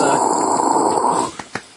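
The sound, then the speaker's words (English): A voice imitates applause with a sustained, breathy rushing hiss that lasts over a second, then cuts off into two short, sharp puffs of noise. “That was applause, by the way. Yeah. Not me clearing my throat.”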